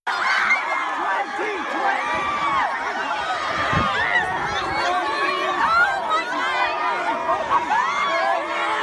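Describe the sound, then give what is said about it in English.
A dense, excited crowd of students at a gun-protest walkout on the Capitol steps cheers and shouts as Bernie Sanders walks through them, a steady roar of overlapping yells and chatter lasting the whole stretch with brief sharper bursts. “Right, all the kids are going nuts.”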